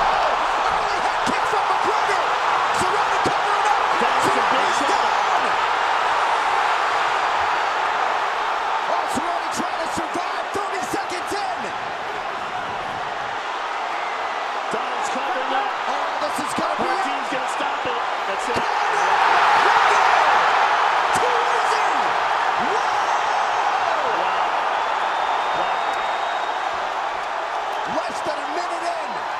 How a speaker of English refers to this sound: You just don't hear crowds get that loud anymore. I'm sorry. Like, you just don't.